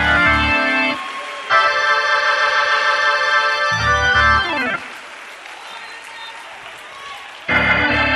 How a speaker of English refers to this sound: Clap your hands, everybody. I said, clap your hands, everybody. Clap your hands, everybody.